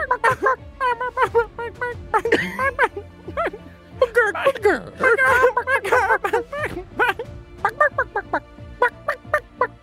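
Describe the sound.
A person imitates a chicken as a new character, with a rapid stream of squawking, clucking vocal bursts, loud, in choppy rhythmic runs that continue throughout with only brief pauses.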